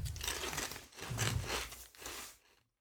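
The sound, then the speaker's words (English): Loud, crackly crunching of someone biting into barbecue-flavoured crisps, in three rough bursts of chewing that fade out at the end, with no talking. “Don't bite into the mic. Cheers. As you bite into the mic.”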